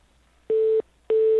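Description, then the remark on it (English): An office's telephone hold double beep heard by a caller put on hold: two identical mid-pitched electronic tones, each about a third of a second long, separated by a short gap over a faint line hiss, with no talking. “Is that double beep a Canadian thing, or just this office happens to use that?”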